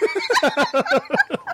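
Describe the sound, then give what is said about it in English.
Someone imitates a goat bleating with a fairly loud, nasal voice that quavers rapidly in a stuttering wobble for about a second and a half, with no other talking. “Fine, I want the goats. I can hear him go, meh.”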